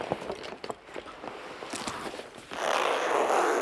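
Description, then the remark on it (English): Fabric rustling and small clicks of handling, then a steady, rasping zipper pull lasting just over a second as a white spacesuit is zipped up after the arms go into the sleeves of its attached space jacket. “Next, put each arm, one by one, into the sleeves of the attached space jacket and zip up the suit.”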